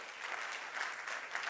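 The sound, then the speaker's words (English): An audience claps steadily, a dense, even wash of many hands with no pauses, holding at moderate loudness for the full stretch with no voices rising above it. “You know, unfortunately, yeah, we can clap for that, absolutely.”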